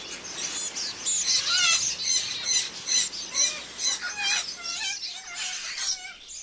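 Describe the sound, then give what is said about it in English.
A chorus of caged pet birds, one named Stella, chirping and squawking at home in the morning, with dense overlapping calls and sharp harsh squawks repeating throughout, busy and fairly loud with no voices. “When I hear Stella yapping at the radio and everybody's chirping, and I'm happy because I wake up in the Amazon.”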